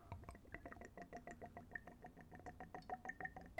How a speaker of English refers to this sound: I do all my tastings neat, so that's room temperature. The spirit's not diluted. I'm just pouring it in a clean Glencairn glass. So we'll go for a little pour.